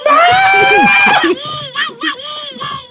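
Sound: screaming sound effect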